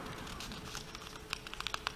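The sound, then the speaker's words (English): Soft crinkling and rustling of a thin, sticking paper page being peeled and turned during a reading aloud, with a few sharper crackles and ticks near the end; fairly quiet, no voices. “Wow, that paper's really sticking.”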